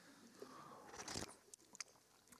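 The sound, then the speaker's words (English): A quick sip of water: one soft slurping rush of air and liquid, then a couple of small wet clicks as it's swallowed, all quiet with no talking. “Let me take a drink of water real quick.”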